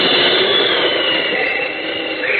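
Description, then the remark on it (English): A loud, steady rushing whoosh of Superman's flight, like a jet streaking past, roaring continuously for a couple of seconds with no voices over it. “Boy, talk about your rocket planes.”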